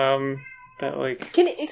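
A cat meows loudly, one long drawn-out cry that trails off, followed by a burst of further yowling and chattering vocal sounds.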